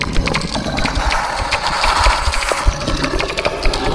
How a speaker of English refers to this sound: The bat crawls out of the bell and across its mossy surface like a squirrel. It opens its mouth wider than is polite and emits a clicking sound.